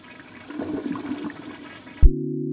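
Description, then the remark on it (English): A toilet flushes with a rushing, gurgling swirl of water for about two seconds, then cuts off abruptly into a steady low electronic hum. “Like, the one that comes to mind most, that I find most boggling, but I use every day, is the toilet.”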